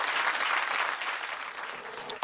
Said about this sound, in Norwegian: Ja, vi runder av her, og så gir vi en stor applaus til dagens gjest, som blir stående igjen på scenen